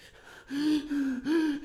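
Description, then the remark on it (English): Loud breathing right into the microphone, a quick run of heavy, voiced gasping breaths in a steady rhythm, with no talking. “Me breathing?”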